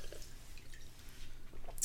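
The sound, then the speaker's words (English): Beer being poured into a glass, a soft trickle with faint dripping and fizzing over about two seconds, quiet against a low background hum with no voices. “So, get another little taste. Let me just pour a little bit.”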